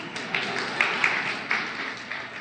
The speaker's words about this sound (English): Oh, sure, he gets claps. I don't.